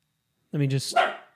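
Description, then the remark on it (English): A single short, close bark made by a human voice imitating a dog, one gruff burst with a breathy tail, then silence. “Barking dog, the Baltic Gladiator, Modestus Bukauskas, getting a victory in his UFC return.”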